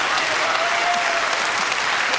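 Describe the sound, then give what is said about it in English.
Steady, dense audience applause as the audience picks a contest winner by applause, a continuous wash of many hands clapping at an even, fairly loud level throughout, with no voices standing out. “Well, audience, it's up to you to pick a winner by applause.”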